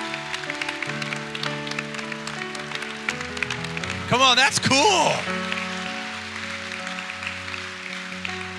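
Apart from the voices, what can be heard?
audience clapping and shouting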